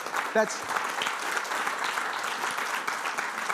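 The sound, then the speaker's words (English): Steady applause from an audience fills the whole stretch, a dense wash of many hands clapping at moderate volume, with a brief voice-like cry near the start. The applause celebrates a couple's 70-year wedding anniversary. “That deserves a 2 week in a row clap.”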